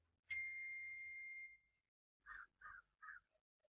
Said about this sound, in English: My phone's gonna start going off. But it's okay. I hope it's not irritating you.